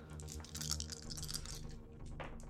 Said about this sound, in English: Roll armor. Okay. So you have an armor rating of 3, so roll 3d6, and for every success, dice. Yeah. Give me your pretty purple dice.